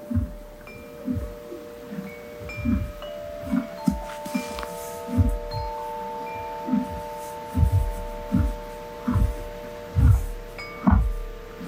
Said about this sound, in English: We hear the wind chimes again here. They're those big, long tubes. They're black, and this one, I think, was like Tones of Japan. It's got those low tones that make me feel good.